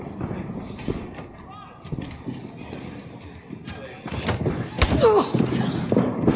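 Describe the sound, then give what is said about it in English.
A single sharp, hard slap across the face cracks out loudly during wrestling training, as a woman, Paige, slaps back another woman who had hit her three times, amid a jumble of voices and shuffling, followed by raised, agitated talking. “She slapped her, like a for real slap.”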